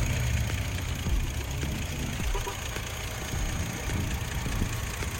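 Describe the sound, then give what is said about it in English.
An SUV engine idles steadily, a constant low rumble with a faint mechanical hum on top, holding an even level throughout with no voices. “And I had no issues with this car when I got this handed to me, so yeah, I mean, engine runs good, no cracks or damaged seals or anything.”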